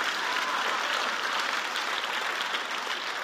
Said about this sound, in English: Yeah, we can, come on. If you're going to clap, then clap.